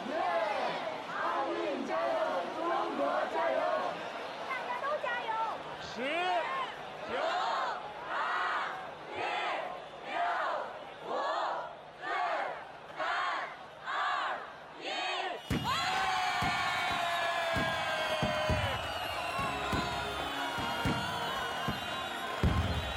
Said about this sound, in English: I need lozenges from too much cheering. There's a lot of cheering going on. It's great. The atmosphere is amazing.